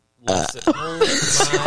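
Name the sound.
burp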